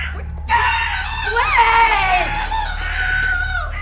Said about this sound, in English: I was just running some laps and screaming, you know. Scream jogging, scrogging. It's all the rage these days.